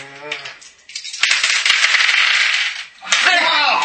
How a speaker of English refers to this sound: Oh! you guys can make 2 stress dice rolls each.